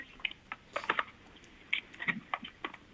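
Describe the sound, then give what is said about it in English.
Crunchy chewing of freeze-dried scrambled eggs, a quick irregular series of crisp crackling bites and crunches with brief pauses between them. No one speaks. “No, but even despite that, the eggs are a little crunchy, which is not really a thing you want with eggs.”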